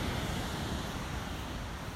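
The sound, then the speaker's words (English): Steady rushing water of a river beside a home, heard on a rainy-day walk, fills the whole stretch, a broad continuous wash of flowing river noise, even in level, with no voices. “I live by a river, I live on a river, so you can hear that in the background too.”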